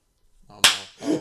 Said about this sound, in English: Slap you across the face, bitch.